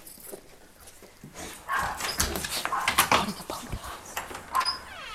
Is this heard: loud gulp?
no